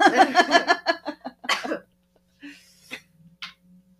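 A loud fit of coughing: a quick run of harsh bursts for under two seconds, followed by a couple of softer, scattered coughs and breaths.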